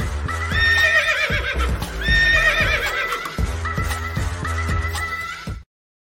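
A horse whinnies loudly, twice in a row, while hooves clip-clop steadily underneath, then the sound cuts off abruptly. No one speaks.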